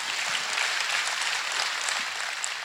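A crowd breaks into steady, dense applause, many hands clapping together at an even loudness throughout, with no voices standing out above it.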